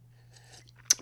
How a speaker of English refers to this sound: Now, it was mighty kind of you, boss, to let me have a little sippy poo of water now, boss.